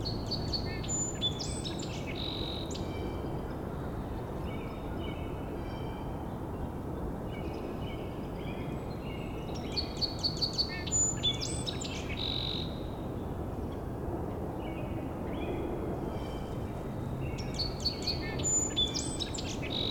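Sandhill crane calls come in faint, rolling bursts, returning every few seconds over a steady low background hiss, with no one talking.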